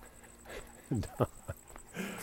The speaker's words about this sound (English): I can hear Bud. Maybe you can hear Bud panting here. He's walking pretty strong. On his Benadryl too.